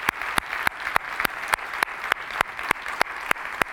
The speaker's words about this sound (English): If you've served in the past, if you're currently serving, go ahead and stand right now. Let's give our vets a huge round of applause.